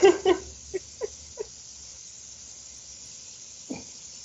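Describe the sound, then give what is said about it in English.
A dog nibbles at its own paw, a quick cluster of soft, wet chewing clicks, a pause, then one more bite, all over a faint steady hiss. “don't bite your feet. Don't do it. You have a toy right next to you.”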